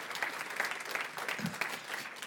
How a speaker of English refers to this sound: He did an altar call 2 weeks ago, and we had 15 teenagers respond to the gospel and receive Christ as their Savior. So would y'all give the Lord a hand clap?